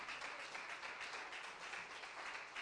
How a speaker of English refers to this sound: Give the Lord a clap offering right now.